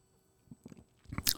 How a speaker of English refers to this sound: So I'll raise my glass and take a sip.